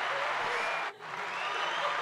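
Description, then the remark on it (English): An applause sound effect, played when a contestant answers correctly: a steady wash of clapping crowd applause, dense and even, with a brief dip in the middle before it resumes at the same level. No one speaks over it. “So if she gets it right, she gets applause.”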